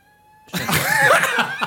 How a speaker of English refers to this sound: Shut up, cat.